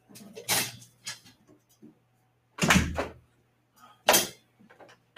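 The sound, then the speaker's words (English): A door shuts with a heavy thud, set among two other sharp bangs spaced a second or two apart, with soft shuffling and a faint steady hum in between. “He's going to make me be hot because I can't have the door open.”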